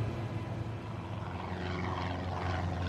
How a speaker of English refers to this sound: It's February 1996. Three twin-engine Cessna Skymasters are flying in formation, headed south toward Cuba.